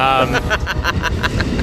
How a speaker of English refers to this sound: It is, it is indeed an Amtrak. Here comes a caboose. Oh, there we go. Of which there are no cabooses on Amtrak. It's just another car.